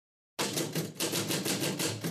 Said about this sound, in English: Now what are you typing? A book list.